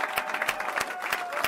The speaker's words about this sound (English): Let's give our great governor another round of applause.